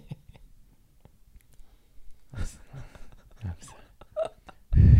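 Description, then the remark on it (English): Several short, soft rumbling bursts break a near-quiet stretch, followed by a loud, low, blatty fart right at the end. “Sorry, I farted.”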